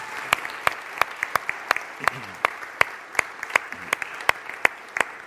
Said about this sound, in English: if you were one of our founding members, could you just please stand so people kind of know who you are and we can just recognize you and your kids too? Go ahead. Can we give those guys a round of applause?